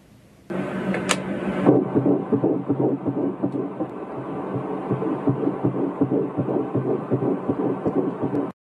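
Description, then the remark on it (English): The heartbeat of an unborn baby girl on an ultrasound monitor: rapid, steady whooshing pulses over a low hiss, loud. It opens with a brief crackle of static, and there is no talking. “That heartbeat, if it exists, you can't stop that.”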